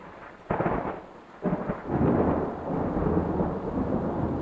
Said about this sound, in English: Less than 10 miles down the road, and it started storming. It started raining so hard